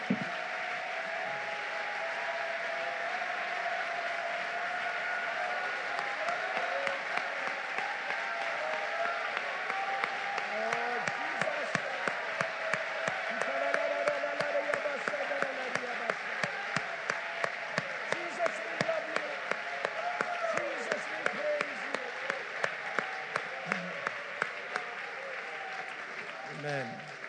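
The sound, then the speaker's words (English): A large church audience claps steadily and loudly in praise of the Lord for about 10 seconds, the dense applause mixed with cheers and shouting voices, growing more emphatic with sharp claps toward the end. “For about 10 seconds, let's give the Lord a great big hand clap of praise.”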